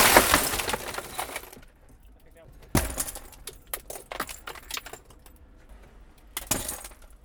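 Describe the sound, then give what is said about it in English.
A car's window glass is smashed, heard from a recorder placed inside the car, in loud bursts: an initial crunch, a sharp smash partway through, then scattered tinkling shards and another crash near the end. “No glass on you so far.”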